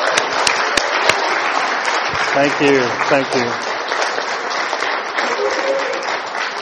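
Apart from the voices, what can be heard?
audience applause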